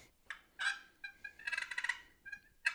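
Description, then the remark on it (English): A wooden box call imitates a turkey's purr, a feeding call made by grinding the lid: scratchy, high-pitched bursts, then a longer rolling, fluttering rattle in the middle, with a few short clucky notes after. No talking. “The hardest to do on a box call is purring. Basically, you're going to grind the lid.”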